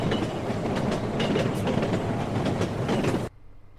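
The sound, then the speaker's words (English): A runaway game cart, wildly out of control, rattles and clatters loudly down a track, a dense, continuous rumble with rapid clacking that cuts off abruptly near the end, leaving near silence. “So, you have a cart that is going down a track, and it's wildly out of control.”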